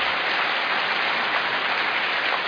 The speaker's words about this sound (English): Let's give the speakers a big round of applause.